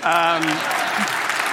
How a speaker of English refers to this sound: And we are very proud of that. You can clap if you want.